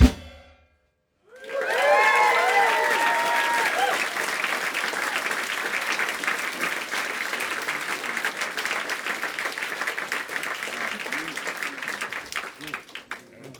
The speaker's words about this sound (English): All right, well okay, if you like the way you sound, then clap, man. If my people love it too, then raise your hands.